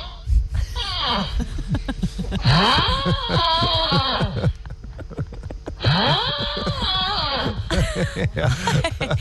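A man snores loudly, with harsh rasping breaths that rise and fall in pitch. Two long drawn-out snores stand out among shorter snorting and groaning sounds, with no talking.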